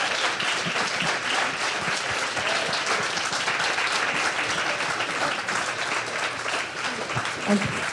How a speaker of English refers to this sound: Well, let's give a big round of applause for our panel.